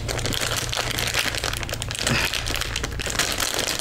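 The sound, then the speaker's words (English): Continuous crinkling and crackling of a plastic snack wrapper being pulled and torn open, a dense rustle lasting several seconds with no voices. “I still gotta open it. Now I'm opening this for my reactions.”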